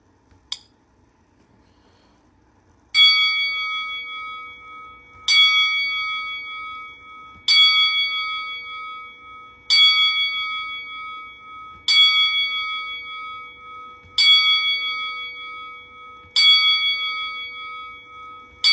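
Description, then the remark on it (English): A bell tolls ten times in tribute to wrestler Pat Patterson, slowly and evenly, each loud, clear strike ringing out and fading before the next, about every two seconds, with no talking over it. “So, to show our respect and pay tribute to Pat Patterson, we will now toll the bell 10 times.”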